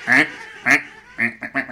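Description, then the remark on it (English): A duck quacks five times in quick succession, two longer nasal quacks followed by a faster burst of three, loud with no talking. “Yeah, quite a few ducks.”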